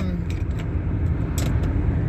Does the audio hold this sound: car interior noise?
yes